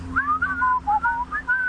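Someone whistles a short, bouncy melodic phrase of a pop tune, a handful of clear pitched notes gliding up and down in quick succession with no talking.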